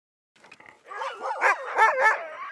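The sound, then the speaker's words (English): Excited dogs bark and yelp as they are taken for a ride, a few sharp barks bursting out over continuous high whining, building quickly and staying loud to the end, with no one talking. “Yesterday was spent doing chores, but today it's time for one of my favorite things in the entire world, taking the dogs for a ride.”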